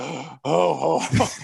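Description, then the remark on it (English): A man voices a strained, wheezy groaning breath, two drawn-out voiced exhalations with a brief pause between, fairly loud, imitating Santa Claus breathing heavily in a deep jolly-old-man voice. “He sounds like he's he's taking his last breaths.”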